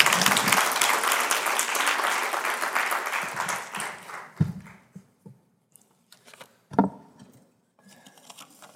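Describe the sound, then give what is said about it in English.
A crowd applauds loudly and steadily for about four seconds to welcome a speaker, then the clapping thins out and fades, leaving a few scattered claps and soft background noise. “Would you welcome him with a big round of applause?”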